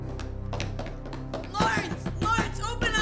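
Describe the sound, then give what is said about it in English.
A neighbor raps several sharp knocks on a door in an uneven rhythm, then a loud, urgent voice keeps going over a steady low background hum. “In a moment, she'll be knocking at my door.”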